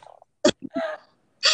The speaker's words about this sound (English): Oh, my God. Dude, honestly, I think half of this is just me wheezing. It's going to be really tough. Yeah, I know. I'm like coughing this whole entire time.